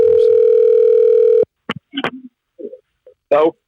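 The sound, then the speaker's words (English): The loud, steady ringing tone of an outgoing phone call hums for about a second and a half, then cuts off abruptly, followed by short bursts of voices speaking. “Now I'm calling.”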